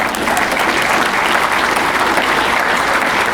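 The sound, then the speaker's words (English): A steady round of applause from a crowd for a woman about to try a Wordle puzzle, dense and loud, with many hands clapping together in an even, continuous patter for a few seconds and no voices standing out. “a round of applause as she tries.”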